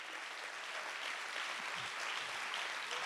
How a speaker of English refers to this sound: Let's clap our hands and give Him praise.